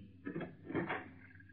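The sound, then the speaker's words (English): A door swings open with a drawn-out, groaning creak that rises in two swells, close by and moderately loud, with no voices over it. “And the opening of this door introduces us to another in the series, The Key.”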